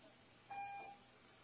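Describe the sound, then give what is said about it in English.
A single short electronic beep from a building alarm sounds for about half a second, a steady mid-pitched tone heard fairly faintly against a quiet background, with no one talking. “Three in one day. We haven't had three false alarms.”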